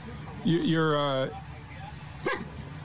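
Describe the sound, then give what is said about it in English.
A man in a red shirt, in Odd, West Virginia, imitates a dog, letting out a loud, drawn-out howling bark with a strong harmonic whine, followed by a short, sharper yelp a moment later against faint background noise. “You keep hearing a dog bark? That's not a dog. That's that dude in the red shirt.”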